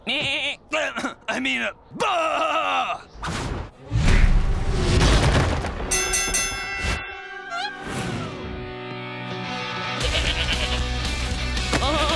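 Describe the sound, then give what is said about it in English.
A goat bleats several times in quick, wavering cries near the start, a goat making trouble up on Goat Mountain, followed by loud rumbling crashes and sustained electronic-sounding tones that fill the rest of the scene. “I hear there's a goat making trouble up here.”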